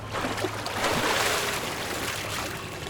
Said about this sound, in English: He swims over to the edge of the lake and pulls himself out of the water.